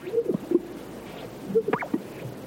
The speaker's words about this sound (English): The eerie call of the greater sage grouse and the howls of a coyote echo across the arid sagebrush of California's Great Basin.